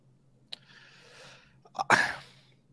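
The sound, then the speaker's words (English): A soft click, then a breathy sniffling inhale after eating hot seafood bisque, followed by a short catch and a sudden loud, hissing burst like a sneeze that tails off. No one talks. “Seafood bisque, and it was delicious, although it was hot, so I got a bit of a sniffle going on.”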